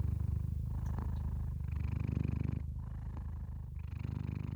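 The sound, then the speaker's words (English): A cat purrs steadily, a continuous low rumbling with a rhythmic pulse that swells and eases with each breath, with no voices over it. “Those are noodle purrs.”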